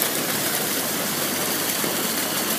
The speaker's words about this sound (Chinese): 回去的时候，我喜欢从情人坡中间穿过，喜欢打扰那些正在你侬我侬的情侣，也喜欢听一听不太常开的瀑布的声音。